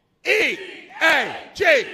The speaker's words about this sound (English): Needless to say, we need the Eagles to win. Go Eagles, and we're going to do an Eagles cheer